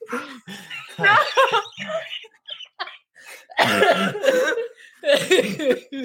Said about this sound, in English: You guys just take a bong rip over there? What's going on? Yeah. Cough that shit out.